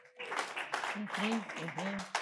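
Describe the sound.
A church audience claps steadily in a dense, continuous patter for a woman called up front, while voices call out over the applause, with a few louder cheers rising and falling.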